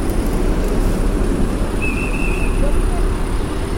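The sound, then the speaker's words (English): A steady, dense rumble of idling and slow-moving vehicles in a big traffic jam on 8th near 42nd Street, with a brief high whine cutting through midway; loud street traffic with no clear voices. “Wow, big traffic jam here on 8th.”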